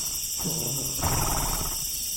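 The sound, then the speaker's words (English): A horse gives a breathy, rumbling snort and whinny lasting about a second, outdoors at night in southwest Wisconsin, while crickets chirr steadily in the background. “That's my mother-in-law's horse over there.”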